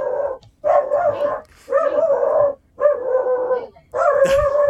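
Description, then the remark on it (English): A dog, Layla, barks insistently at a neighborhood dog going by, five loud, drawn-out barks in a steady rhythm with brief pauses between them and no one talking. “Every day when it goes by, she's like going crazy.”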